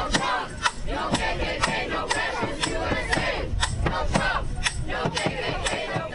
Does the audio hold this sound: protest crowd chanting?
yes